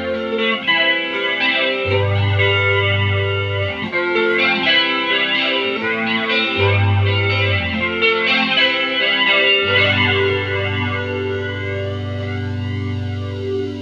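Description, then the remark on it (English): A bright, jangly twelve-string guitar run through a flanger, its chords swirling with a slow whooshing sweep. It plays steadily and loudly for about fourteen seconds, with deep sustained low notes underneath and no voices. “I love a classic flanger because they're not as harsh as new ones, you know?”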